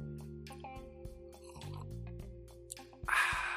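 A quick, airy slurp of coffee near the end, preceded by a few soft clicks and handling noises over a steady low electrical hum. No one speaks.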